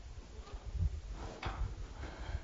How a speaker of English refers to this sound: you could shut the doors.